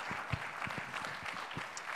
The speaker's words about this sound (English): Well, clap your hands unto the Lord if you believe that today.